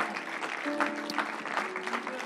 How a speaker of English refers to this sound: You can lift your heads, church. Let's clap our hands. Come on, we can do better than that.